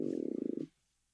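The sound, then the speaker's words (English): A brief stomach gurgle as lunch is digested, a bubbly, rippling growl lasting under a second before cutting off into quiet. No one speaks over it. “That was your stomach?”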